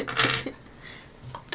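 A d20 die is rolled and clatters briefly on a hard surface, a bright rattling burst followed by a couple of faint, sharp ticks as it settles.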